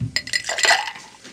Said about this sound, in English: So now we're going to add our ice.